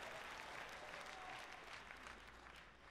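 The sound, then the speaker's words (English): A crowd applauds steadily for the Apostle Paul, a dense wash of many hands clapping at once that holds a fairly even level for the whole stretch without pausing. “Give it up for the Apostle Paul.”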